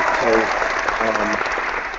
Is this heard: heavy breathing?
no